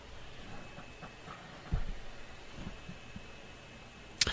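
Phone line interference: a low, murky hum and steady thin whine with faint throbbing pulses, a sharp crackle partway through and another burst at the end, with no voices during the drop-out.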